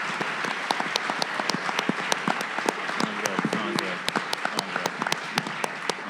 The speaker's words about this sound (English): huge, huge applause for Austin Vesely, Heber Brantley, and Andrew Barber from Fake Shore Drive